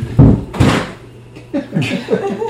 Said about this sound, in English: Gonna have a little bit more wine and knock over a water bottle. Does anyone else want something? Like, something thuds. And like, it wasn't electronics. I was very careful with the electronics. I wasn't careful with the water bottle.